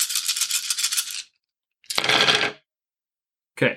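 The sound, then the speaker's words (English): A handful of dice rattles in a cupped hand for about a second, then clatters across a hard surface in a loud rolling burst, followed by one short final clack. “Fistfuls of dice.”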